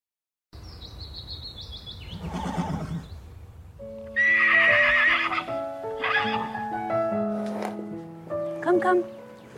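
A horse whinnies loudly and at length, its shrill cry rising and breaking into choppy harmonics, over a muffled clatter of hooves and faint chirping in the background.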